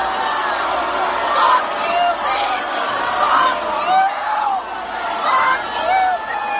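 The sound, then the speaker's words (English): A large, irate concert audience boos and berates a fan on stage, a dense wall of overlapping voices with occasional louder shouts rising above, sustained and fairly loud for the whole stretch. “In retaliation, she was booed and berated by an irate audience in a hip-hop rendition of Orwell's 2 Minutes of Hate.”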